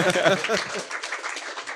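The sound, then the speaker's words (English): A crowd applauds steadily for Michelle Mayer, winner of the Wolf Prize in Physics, at an evening show: a dense patter of many hands clapping at once, with a voice or cheer rising over it at the start before the clapping carries on alone. “Round of applause for Michelle Mayer, and he's here tonight in Sigourney Weaver pants.”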